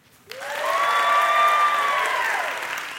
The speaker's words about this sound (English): Let's try this. When I raise my hands, you applaud wildly, all right? Ready?